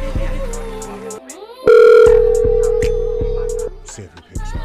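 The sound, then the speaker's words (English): A phone call rings out with one long, steady, loud electronic tone, while a thumping music beat plays underneath. “See if he picks up.”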